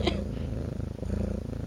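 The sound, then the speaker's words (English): A smart speaker plays a happily purring cat: a steady, low rumbling vibration pulsing in a quick, even rhythm throughout the short stretch, with a brief soft click at the very start. “To hear a happily purring cat, just say purr.”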